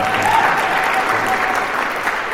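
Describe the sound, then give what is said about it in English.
A crowd applauds following a live performance of music from the game Super Mario World, a dense, even wash of many hands clapping at full volume that holds without pause for the whole stretch. “How about a round of applause for”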